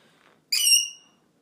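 A single bright, high chirp of a bird rings out suddenly after a brief quiet moment, then fades away within about half a second, clear and fairly close with no voices.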